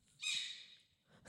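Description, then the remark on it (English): A porcupine gives a single high-pitched, whiny squeal lasting about half a second, loud, fading out before a short rustling burst at the end. “This porcupine has been asked to leave the Michaels for not wearing a mask.”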